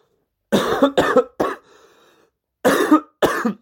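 A person coughs five times in two quick clusters, three hacking coughs, a short pause, then two more, loud with no talking.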